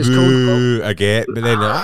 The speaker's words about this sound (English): I know, so it's called the Wilhelm scream, and for some reason it's playing them both at the same time.